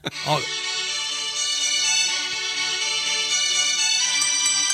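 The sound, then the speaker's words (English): A phone ringtone for an incoming call plays inside a bunker for several seconds, a steady, bright melodic tone that rings continuously at a fairly loud level with no one speaking over it. “Just give me a call real quick, and hopefully we have a signal inside these bunkers that we are in right now.”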